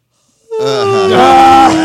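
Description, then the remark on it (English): A loud, drawn-out yawn voiced by a man, rising into a long open groan that holds for over a second before tapering off, with no other sounds around it. “He kept giving some big old yawns.”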